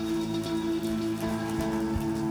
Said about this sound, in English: And if anybody agrees with any of that, can you just give God a hand clap of praise this morning? Hallelujah!